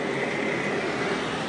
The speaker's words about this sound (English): Bus is passing. 46A going to Dunleary.